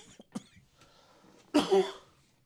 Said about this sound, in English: There is a cough button here. You just got to let me know when you're going to cough, and I can go, "You're not on air," and whatnot.